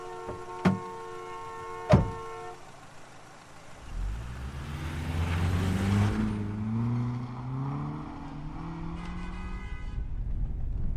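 Two sharp clicks with a short ringing tone, then a car engine rumbles up and revs as the vehicle pulls away, ending with a steady whirring like a power window moving. No voices.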